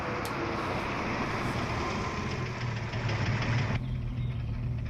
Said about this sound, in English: I do like the design of these helicopters, though. They're quite, a change from the sort of heli jets of Thunderbirds.